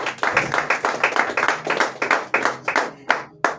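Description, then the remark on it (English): A group of people clapping their hands for themselves at a Wednesday night gathering, in a steady, fairly loud burst of overlapping claps that thins out toward the end into a few scattered claps. “So clap your hands for yourself.”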